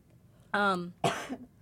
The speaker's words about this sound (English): not you coughing.